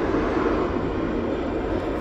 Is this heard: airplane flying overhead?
yes